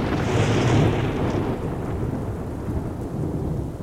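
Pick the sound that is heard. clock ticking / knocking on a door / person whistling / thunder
thunder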